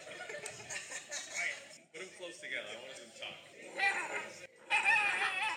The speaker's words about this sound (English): I found a video that's called Shiba Inu Scream Off